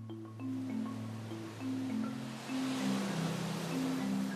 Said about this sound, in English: Waves crashing on Ocean Beach, trees blowing in Golden Gate Park, pedestrians crossing Market Street.